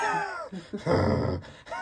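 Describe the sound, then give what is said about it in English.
A person imitates snoring: a short voiced groan, then a loud, rough, rattling snort-like breath lasting about half a second, with a brief vocal sound after. “No, I don't snore. Are you joking? You're literally the heaviest weaver.”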